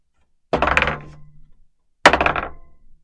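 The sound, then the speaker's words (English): Dice are rolled twice, each throw a sharp clattering tumble across a hard surface that rattles and fades over about a second, with a short silence between the two rolls. “Okay, give me a roll.”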